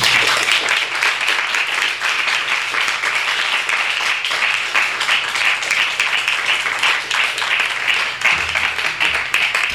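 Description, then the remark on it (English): Sustained audience applause for the readers at a Skylight Books author reading series event, dense and steady throughout, with many hands clapping in a loud, continuous wash and no one speaking over it. “Can we get one more sort of collective round of applause for all our readers tonight?”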